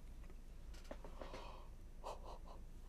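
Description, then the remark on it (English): A single drawn-out yawn, breathy, with a strained, wheezy rise and a few voiced sighing bits as it trails off. Nobody speaks. “Apologies for the yawn.”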